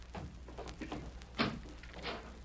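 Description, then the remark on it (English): A door opens quietly in the dark, with a short clunk of the latch partway through and soft scraping movement around it, against a faint, hushed background. “Door's open”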